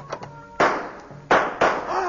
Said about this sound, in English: Suddenly, the door of the bungalow is flung open.